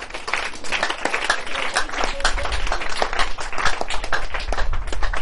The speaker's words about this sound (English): If you can, clap your hands unto Jesus.